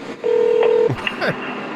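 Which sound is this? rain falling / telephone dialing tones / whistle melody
telephone dialing tones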